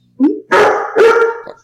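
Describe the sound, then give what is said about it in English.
A puppy barks three times in quick succession at the door, loud, the middle barks drawn out and harmonic like a yowling bark, with no voices present. “You got the puppy dog who likes to watch the door for whatever's going on.”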